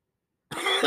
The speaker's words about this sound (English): Oh my god. Sorry, I don't mean to cough on your thing.